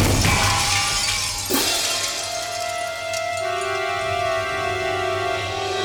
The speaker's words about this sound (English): As the bomb exploded, Ernest jumped inside the smashed window of a nearby store.